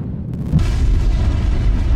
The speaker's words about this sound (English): An asteroid came rocking out of the sky and crashed into Earth.